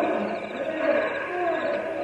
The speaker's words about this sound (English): What's that? My cougar. He come close to camp.